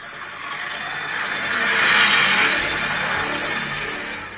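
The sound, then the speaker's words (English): A car engine revs, its broad roar building to a peak around the middle and then easing back down. It's fairly loud and steady, with no voices. “That was the engine.”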